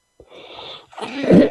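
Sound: coughing and throat clearing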